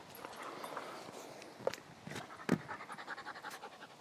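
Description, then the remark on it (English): A dog pants steadily, quick rhythmic breaths running throughout, with a couple of sharp metallic clicks as a lead is clipped on and faint shuffling underneath. “I must pause for a minute. Put the dog on the lead.”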